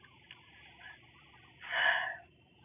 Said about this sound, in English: So, like, I, like, sneeze. I always do that fake sneeze. So, like, people can be, like, looking at me when I want them to look at me. Instead of coughing, because I feel like coughing is weird.